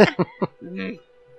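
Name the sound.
coughing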